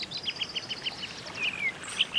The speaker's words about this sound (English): AP, can we get some birds, maybe some flowers blooming?